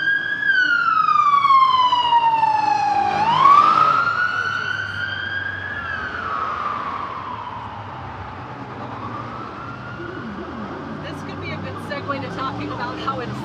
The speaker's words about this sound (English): oh my gosh, yeah, this is just such a loud ass road. It's so loud, yeah. So, speaking of sirens, yeah, a great segue as that police car speeds, you know, who knows how fast down the road